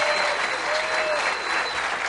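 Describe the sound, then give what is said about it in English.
A crowd applauds the staff of WBEN and Northeast Productions at a five-star VIP breakfast event, many hands clapping in a dense, even wash that holds at the same loud level throughout without breaking off. “Give everybody from WBEN, Northeast Productions, a round of applause.”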